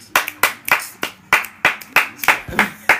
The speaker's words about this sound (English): And clap it up, bro.